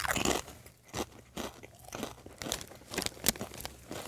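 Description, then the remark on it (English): Loud crunching of crisp kettle chips, sharp bursts repeating irregularly about every half second with chewing noise in between, and no talking. “Apologizing for the loud crunching here, because we've got some kettle chips going on.”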